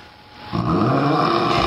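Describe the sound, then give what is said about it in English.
A voice imitates a person's loud snoring, likened to an old man's: a quiet breathy intake, then a sustained, rough, rattling rasp that holds steady for over a second with a gravelly low buzz. “You rip like that, like an old man.”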